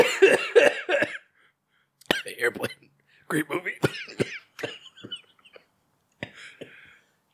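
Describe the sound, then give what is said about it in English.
Someone coughs and sputters in harsh, choking bursts after swallowing water wrong, with several loud fits broken by short pauses, and a few spoken words squeezed in between the coughs. “I'm choking on water.”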